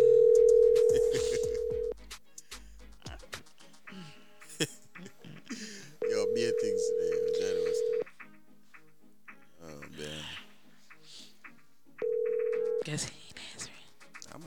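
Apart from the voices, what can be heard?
telephone dial tone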